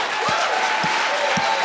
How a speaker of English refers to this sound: One more time. Put your best hand clap together for God.